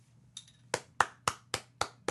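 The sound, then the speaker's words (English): A short burst of applause: about six sharp, evenly spaced claps in a brisk steady rhythm, fairly loud over a faint low hum, with no one talking. “That's just he actually said pause for applause in the email.”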